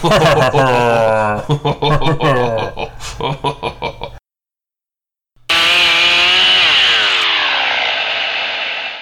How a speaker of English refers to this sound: No, don't all fire up your chainsaws at once.